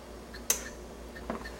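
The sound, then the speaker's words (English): Two crisp mechanical ticks from a clock that has just been set, the first sharper and the second softer, spaced under a second apart, with no talking. “I think I just changed their clock to say it's 10 o'clock in the morning.”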